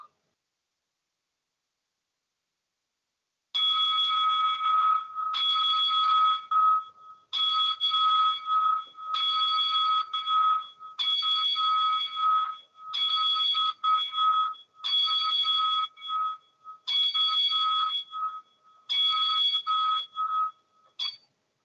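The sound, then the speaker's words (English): A bell rings ten times in a steady, evenly spaced sequence as a ten-bell salute in tribute to wrestler Paul "Mr. Wonderful" Orndorff, each strike bright and clear with a brief ringing decay, after a few seconds of silence. No one speaks. “And right now the Top Rope Report would like to pay tribute to the career of Mr. Wonderful Paul Orndorff with a 10-bell salute.”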